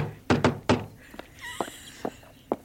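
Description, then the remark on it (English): A postman gives three firm knocks on a door in quick succession, followed by a few fainter thuds and light clicks. “Someone at the door.”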